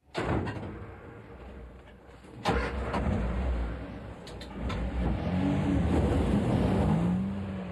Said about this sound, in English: The machine is on as a bagger, which cuts the turf and spreads it. The buckets there are cutting into the bank, putting it into a conveyor, passes through a macerator which pulverizes it and mixes it up and forces it out along a plate chain